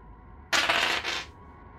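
Dice are rolled for a listen roll in a game and come up 55: they clatter and rattle across a hard surface in one quick burst of bright clicking that lasts under a second, then stop. No one speaks.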